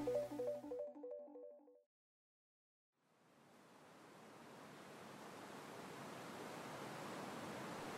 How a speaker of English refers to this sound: June 4th, 2017, late at night. Picture purple-gray. In the ocean, in the sky. Dark water smashes on pale sand.